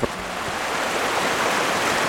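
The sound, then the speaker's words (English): Steady, rushing water roars without pause: a clean, crystal-clear river tumbling over rapids between deep and shallow pools. The hiss is dense and even throughout, with no voices or other sounds breaking through. “So beside this, the river is just a series of deep pools, shallow pools, and then rapids in between them.”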